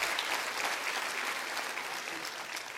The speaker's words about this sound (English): Can you clap your hands to that this morning? I believe that.